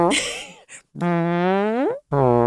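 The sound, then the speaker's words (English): A voice blows a few buzzy, mouth-made farting noises, the longest one sliding upward in pitch before a short final burst, loud with no words spoken. “We also make farting sounds all the time.”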